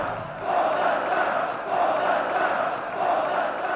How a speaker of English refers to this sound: That is thousands of people all chanting, "Donald Trump, Donald Trump." The White House has arranged this big speech with this adoring crowd bussed in from all over because President Trump needs a bit of a boost.